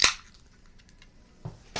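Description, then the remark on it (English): A can of beer brewed in Florida cracks open with a sharp, loud pop and a short burst of fizzing hiss that quickly fades, followed by near quiet and a couple of softer knocks. “I'm popping.”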